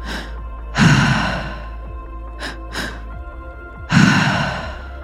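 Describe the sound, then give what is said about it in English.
Deep breathing during a breathwork exercise with no talking: a long heavy breath, two quick short intakes, then another full deep breath, in a slow steady rhythm. “Keep breathing.”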